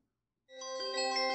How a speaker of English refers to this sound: The bell was the summons to the man with no tongue. It was a brass circle with a clapper attached by a small rod fixed above the only door.